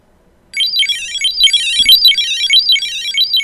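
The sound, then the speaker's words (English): A loud, continuous electronic chime starts abruptly, repeating a rising-and-falling warble in a steady fast rhythm: a tracking tag's find alarm, set off from a linked phone, with no one speaking. “If you want to find the tag that you've left inside your briefcase, your purse, or your child, or your pet, this is what that will sound.”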